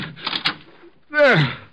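A door to the next room is opened: a brief rattle of the latch and handle, then a short pause and a loud, drawn-out creak that bends downward in pitch as it swings.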